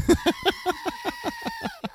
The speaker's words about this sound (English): My sister bought me a screaming goat.